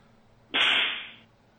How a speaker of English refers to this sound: Wait, is that it? Is that your horse whip? That's it, yeah.